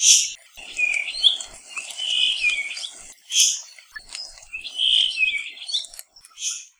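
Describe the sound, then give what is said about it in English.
A Puaohi, a small thrush of Kauai, sings clear warbling phrases mixed with sharp high buzzy notes, repeating in bursts with short pauses between, alone against a quiet background. “Like other rare and cryptic birds, the best way to find one is not by sight, but by sound.”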